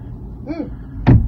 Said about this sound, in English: He just headbutted the mirror. He's banging. This is being filmed by the wife from inside the car.